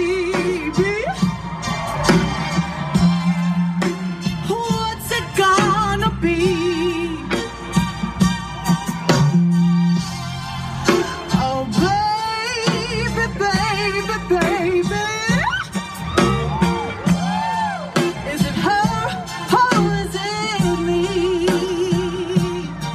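A woman sings live in front of a crowd with soaring, sliding vocal runs over full band accompaniment, loud and continuous throughout, with the warm, roomy sound of a concert performance.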